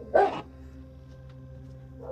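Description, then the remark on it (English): A dog gives one loud, sharp bark, followed about two seconds later by a softer, shorter bark, with a low steady hum in the background and no talking. “My dogs are having a fit.”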